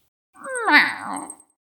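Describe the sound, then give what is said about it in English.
A single drawn-out cat meow, about a second long, rising then falling in pitch. It is fairly loud, with nothing else around it. “Poggy is not a kitty. It is a semi-corporeal avatar of infinite cosmic power.”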